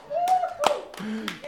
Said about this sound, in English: I didn't clap because I was all I never knew where my hands were, and I still don't. My hands go all over the place, and I'm out of time all the time. So please, as a congregation, don't follow my clapping, but help me to clap in tune.